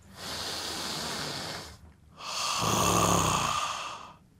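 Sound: deep belly breathing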